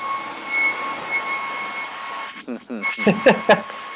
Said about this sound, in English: Not sure why this is happening in the common area. What are they doing, vacuuming? No, hair dryer.